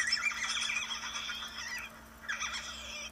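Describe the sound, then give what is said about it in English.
A high, shrill otter squeak, two bursts of harsh, wavering, whinny-like squealing, the first long and loud, the second shorter after a brief pause, with no talking. “Squeak.”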